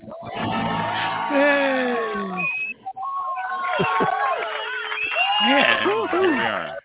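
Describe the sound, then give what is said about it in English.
A crowd of people jumping off a bus with wine in hand, ready for a show, screams and cheers excitedly, many voices overlapping in rising whoops and shouts, with a few sharp claps mixed in. Loud and continuous, with one brief dip near the middle. “Doors open, people jump out, they start screaming, clapping, and all that.”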